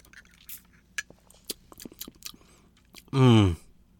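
Quiet slurps and small wet clicks of someone sipping two mojito cocktails through a straw, a rowan berry mojito and a blueberry mojito made with Icelandic blueberry liqueur, followed by a short, loud voiced exhale of satisfaction.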